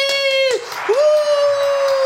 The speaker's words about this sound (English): Give me a round of applause for them, everybody!